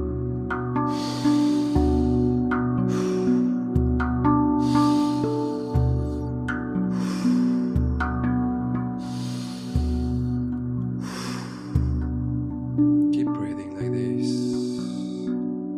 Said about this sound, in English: focus again on your breathing. Try to breathe through your nose and exhale through your mouth. And try to keep the same rhythm. Not too slow, not too fast.